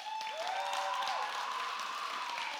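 A steady burst of applause from the boys' side of a quiz show audience as a contestant is introduced, dense clapping with some whooping and cheering, holding at an even, fairly loud level throughout with no speech over it.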